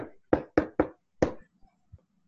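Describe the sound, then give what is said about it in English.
Someone knocks on a mint-green painted door with an axe: three heavy, quick raps, a brief pause, then one more loud blow, followed by a couple of faint, dull thuds. No voices. “I'll rap on the door with my axe and just have it ready in case it's an ambush.”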